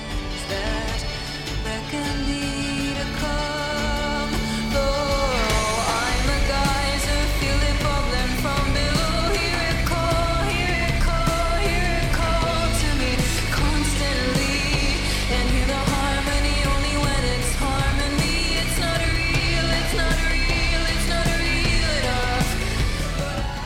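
A song plays steadily with full, dense instrumentation and a sung vocal line that sounds gritty and distorted, holding a loud, even level from start to finish.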